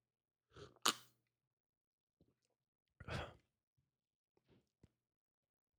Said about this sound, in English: and now I'm like, I'm sitting in front of this Heil PR40 with my beer right here. So let me take another sip and I'll try to describe what this thing tastes like, right?